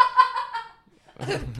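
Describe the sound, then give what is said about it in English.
A voiced, hum-like vocal sound gives way, after a short pause, to a rough, breathy burst like a cough, moderately loud, a person vocally imitating the hollow thud of someone falling on a floor. “Like this, a kind of cough.”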